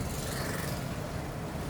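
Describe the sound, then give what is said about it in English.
A steady, low road rumble with a broad wash of hiss from inside a car driving along a city street under heavy construction, past a 40-mile-per-hour speed limit sign, with cones and a closed lane. The level stays even throughout and no one speaks. “You see, I'm driving past a 40-mile-per-hour speed limit sign right now, and the street is under heavy construction.”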